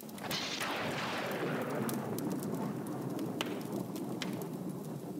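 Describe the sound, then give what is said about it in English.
A lightning strike: a sharp, sizzling crack followed by a loud, rolling thunder rumble that lingers for several seconds, with crackles scattered through it and no voices. “A Gandalf lightning strike interruption”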